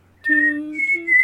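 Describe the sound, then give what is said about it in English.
A short, clear whistled melody of four notes, stepping up and down in pitch, fairly loud, with no talking over it. “It's also the first four notes are also what's her name? The Rue whistle from the Hunger Games in the movie.”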